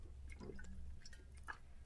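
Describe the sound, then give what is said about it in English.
Quiet sips of water: a few short wet slurps and small liquid clicks over about two seconds, with no talking. “Get some water.”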